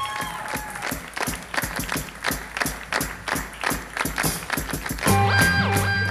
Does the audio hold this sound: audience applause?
yes